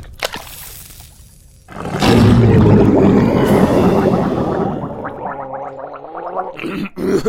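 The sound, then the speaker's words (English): Someone gargles with salt water in a cave, a loud, bubbling, throaty rattle with a voiced groan that starts after a brief quiet moment and churns steadily for about five seconds before sputtering out. “My vocal cords were getting a little tender from all the screaming, so I thought I'd gargle with some salt water.”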